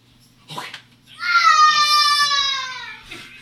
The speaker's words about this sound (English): That was him screaming in excitement.